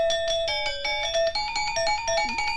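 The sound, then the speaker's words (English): A bright, tinny melody of quick stepping notes, like a Motorola Razr flip-phone ringtone, plays steadily and fairly loud for a few seconds with no voices. It is a recording, made about 70 years ago, of music by a Balinese tribe. “Sounds like the ringtone from a motor razor.”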